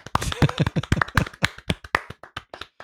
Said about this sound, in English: A round of applause for them, please.